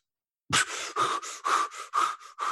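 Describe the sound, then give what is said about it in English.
A voice imitates the frantic gasping of people with fear-based disorders when asked to hold their breath: a sudden sharp intake followed by rapid, rhythmic panting breaths, about eight in quick succession, fairly loud with no talking. “You ask them to hold their breath, they go.”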